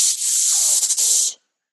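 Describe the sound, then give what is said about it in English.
A person makes one long, steady "shhh" that holds for just over a second, a bright, airy hiss with a couple of slight flutters toward the end before cutting off. “Now give me a little bit of a longer shush.”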